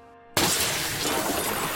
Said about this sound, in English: But that was no matter. Glass isn't as hard as wood anyway. As I shook away the shards of glass from my shoe, I headed in.